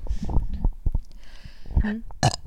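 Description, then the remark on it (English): A low, gurgling burp rumbles out in short bursts, ending with a brief louder belch; no one speaks over it. “Whoa. Burping on the pod?”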